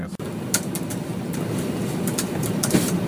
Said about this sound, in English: Terrible. It's like he was tap dancing on the keyboard. What was he typing? He was obviously furious, wasn't he?